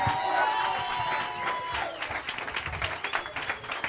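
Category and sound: crowd, audience applauding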